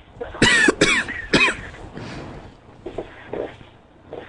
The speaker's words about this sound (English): I got a cough.